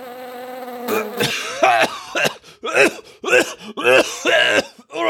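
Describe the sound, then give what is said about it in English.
A thin gnat's buzz drones steadily for about a second, then gives way to a loud run of harsh choking coughs and gagging sputters in uneven bursts from a man who has inhaled the gnat. “Do Nothing Man sniffs around behind him, but catches his throat by inhaling a gnat.”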